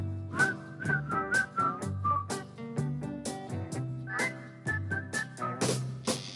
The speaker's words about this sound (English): Guys, whistle along. Come on, guys, it's not that hard. Like this.